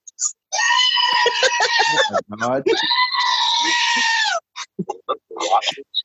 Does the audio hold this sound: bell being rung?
no